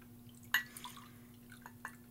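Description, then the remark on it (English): Spirit of America bourbon being poured into a glass for a chocolate whiskey cocktail for six people, heard as a few soft, separate liquid drips and plinks, quiet, over a faint steady electrical hum with no talking. “I'm pouring more because it was a big room.”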